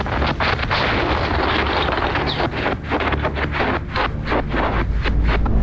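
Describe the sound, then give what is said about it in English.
A massive explosion at a federal building: a deep, loud roar with a heavy low end that runs without a break, broken by rapid crackling bursts throughout. No voices are heard. “We felt it, and we heard it. It was a massive rumble.”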